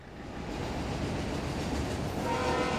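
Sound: train passing with horn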